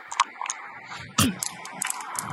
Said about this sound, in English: he's taking long throws with dice towards a backgammon board.